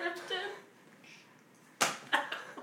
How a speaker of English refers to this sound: Hear that slap?